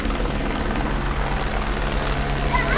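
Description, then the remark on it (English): A local sheriff's department helicopter circles overhead in Long Beach, its rotor producing a steady, loud, throbbing drone with a low rhythmic beat that fills the whole clip without pause. “Got the local sheriff's department buzzing us right now.”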